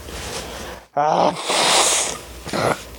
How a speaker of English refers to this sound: Sorry, I had to sneeze.